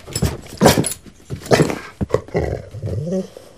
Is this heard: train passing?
no